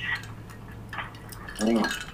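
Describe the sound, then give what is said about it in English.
A few light glassy clinks, like ice knocking inside a glass, as a person finishes a glass of whiskey; brief. A soft murmur of voice rises near the end. “You hear this clinking? Yeah. This is me finishing my drink because I'm not going to waste the fucking whiskey before I bash my fucking glass over your fucking head.”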